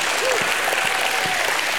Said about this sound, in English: He is the spotless Lamb of God, and he is worthy to be praised. Give him another hand clap and a shout of praise.